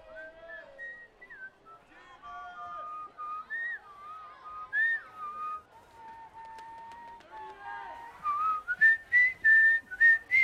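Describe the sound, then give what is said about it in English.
A young boy whistles a meandering little ditty to himself as he wanders through a square, clear, with wavering pitches and short phrases, ending in a run of brighter, louder notes. No talking. “Hours passed when finally a young boy by the name of … came perusing through the square, whistling a little ditty to himself.”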